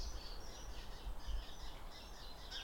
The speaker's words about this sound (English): I can see a starling, and there's a nice wood pigeon. So we've got a lot of birds on the edge of Abergavenny. That high whistle is a starling.